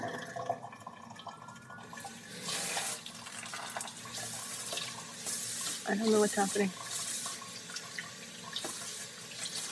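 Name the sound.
running tap water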